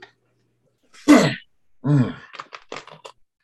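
A sharp cough bursts out, followed by a rough, voiced throat clearing and a few short, choppy coughs trailing off. No one speaks.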